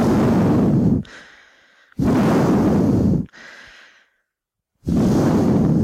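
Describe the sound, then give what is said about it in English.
A man's heavy breathing: three loud, rasping breaths blasting right into the microphone, each trailed by a softer, airy exhale, with brief pauses between them and no talking. “You might not know that, because I do my absolute best to mute out his heavy breathing.”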